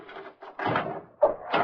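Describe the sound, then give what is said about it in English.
Old wooden rafters of a rotting, ruined building creak and groan in a few uneven, drawn-out strains, moderately loud, with a sharper squeak near the end and no voices. “Nothing but the rafters creaking.”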